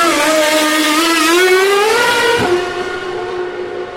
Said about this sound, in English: slightly anxious whine. Oh, it's one of the Williams in the pit with a slightly anxious whine of the full grid of cars, less three, of course, held behind the safety car.